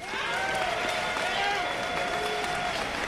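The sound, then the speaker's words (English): A crowd applauds steadily for a few seconds to vote by applause, dense clapping mixed with cheering voices and a few high whistles, holding an even, fairly loud level throughout. “Let's do it by applause.”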